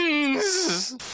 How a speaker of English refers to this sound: And of course, that was my chair squeaking.